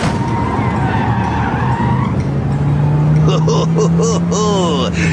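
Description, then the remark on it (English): A car engine roars loudly and steadily, its pitch slowly climbing, then tires let out several sharp, wavering squeals as the vehicle skids near the end. “I thought I'd driven some nice cars, but this one takes the proverbial cake.”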